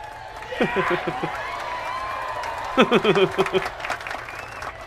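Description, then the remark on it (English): A sound-effect clip of steady crowd applause with excited cheering. Voices whoop and shout in two bursts over the continuous clapping, one early and a louder one a few seconds later, including a man shouting "Yes!" “I like the guy in that sound guy clip who just goes, yes!”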